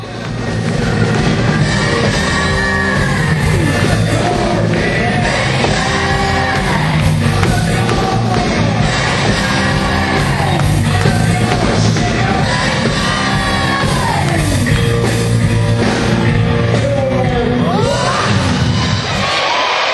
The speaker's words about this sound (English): listen to the crowd sing this song. This was awesome.